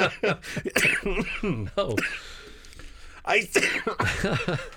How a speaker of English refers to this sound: Why weren't you coughing like this during when we were arguing?